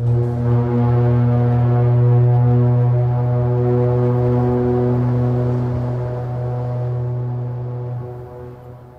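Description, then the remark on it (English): A deep, loud foghorn bellows in one long sustained blast, its low droning tone holding steady for several seconds before slowly fading at the end. No voices. “That heavy bellow can only be one thing, the sound of the foghorn.”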